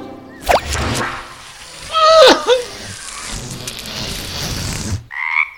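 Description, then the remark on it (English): A frog croaks several times in irregular bursts, with a loud, raspy cluster in the middle over a steady background chorus, then a brief sharper call just after a sudden drop to quiet. “Probably, but you're still a frog.”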